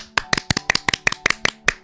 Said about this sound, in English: Great, let's try again. 1, 2, 3, clap.